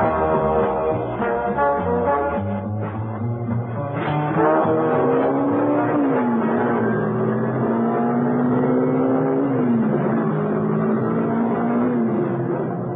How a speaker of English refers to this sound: out on the open road, Mrs. Peel was able to put on some speed. There was no traffic about, luckily, and the car responded like a rocket.